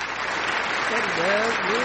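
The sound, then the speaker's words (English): Steady applause, a dense wash of clapping that holds at an even loudness throughout, with a voice rising over the noise in the second half. “Play the good clapping.”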